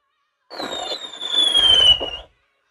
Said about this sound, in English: And you know what? You're going to get the special effects fireworks, baby. That's right. Right here. The really great, expensive.